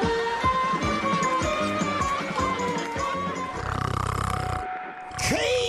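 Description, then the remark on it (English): Loud, rough snoring rumbles in a run of repeated low snorts and grunts, with a longer rattling breath near the end, all over a steady busy background of tones and noise. “You're snoring louder than a freight train.”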